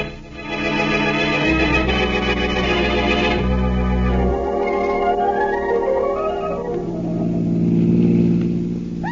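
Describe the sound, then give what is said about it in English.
A car engine hums steadily throughout on an afternoon ride, a continuous motor drone that shifts in pitch as the vehicle drives along, with no voices over it. “Nice afternoon for a ride, isn't it, Blackie? Yes, in a car.”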